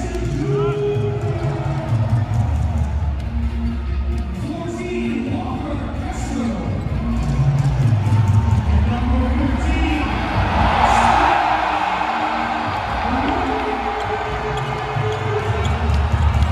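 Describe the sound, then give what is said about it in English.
A loud, steady roar of a basketball arena crowd cheering for a crowd-favorite Team USA player who comes off the bench, with whoops and shouts rising over a dense wall of voices, swelling near the middle and holding strong to the end. “They are gushing for him in the stands.”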